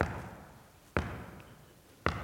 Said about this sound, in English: the purpose is to switch the ball quickly from one hand to the other in order to keep your defender's expectations a little shattered